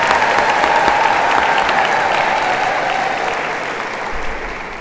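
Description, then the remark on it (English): A church audience claps for Jesus on Palm Sunday in a dense, sustained round of applause that stays loud throughout, easing slightly toward the end, with no talking over it. “We can clap for Jesus.”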